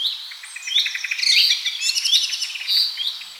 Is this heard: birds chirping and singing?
yes